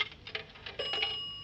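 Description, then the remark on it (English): A telephone rings with a bright, steady metallic bell tone after a few quick clicks as a detective phones Inspector Faraday. The ring is fairly loud and clear, with no voices over it. “Well, I'd better get him on the phone now.”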